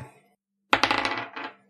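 A purple plastic twenty-sided die, picked from a dice bag, clatters across a tabletop, a quick burst of rapid bouncing clicks that trail off into a short final rattle, fairly loud, landing on six.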